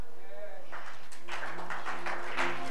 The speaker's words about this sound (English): Your clapping is not powerful at all, like some unbeliever clapping.